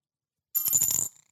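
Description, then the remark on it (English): A single coin drops into a ceramic soup bowl with a bright metallic clink and a short ringing rattle that fades within half a second, with no talking. “Three coins and three coins in a soup bowl.”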